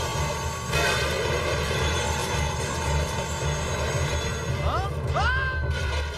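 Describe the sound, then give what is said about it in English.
A helicopter drones steadily and loudly throughout, its low rotor thump pulsing under a dense engine whine, with a few brief rising electronic chirps near the end. “Why he acts so stupid like he didn't know he was in a helicopter?”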